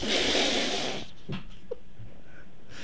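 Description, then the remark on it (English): A caller breathes heavily into a phone: a long, loud rush of breathing lasts about a second, then gives way to quiet, hissy line noise with a few faint clicks and no talking. “Is this the heavy breather?”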